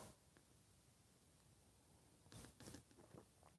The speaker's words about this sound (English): It's called a simultaneous sip. And it happens now. Savor it. Go.